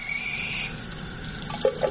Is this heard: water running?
yes